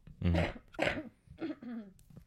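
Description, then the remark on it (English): A fairly loud run of throaty coughs, about four rough bursts in quick succession with brief pauses between them and no talking. “Hold on, I have to cough.”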